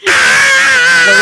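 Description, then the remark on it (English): A single loud, sustained primal scream, high-pitched and strained, held steadily for over a second with no other sounds around it. “Do you think that you could primally scream while tap dancing?”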